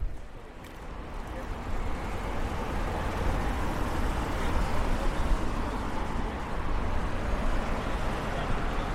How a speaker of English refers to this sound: You can hear the traffic. We're back on Fleet Street.